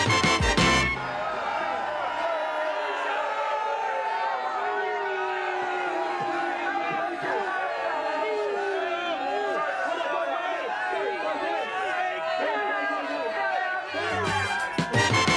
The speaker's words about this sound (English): And then he saw One News over in the corner and he gave us a little shout out. And we've got some footage here to show you of the crowd reaction when he pointed us out to the crowd. Quite fun.